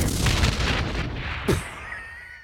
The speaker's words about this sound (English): I just exploded. I was going to say, that was almost more of a gunshot than an explosion. No, I exploded.